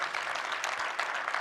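An audience at Westside Church in Bend, Oregon, claps steadily, a dense wash of many hands that stays fairly even and moderately loud throughout, with no voices standing out.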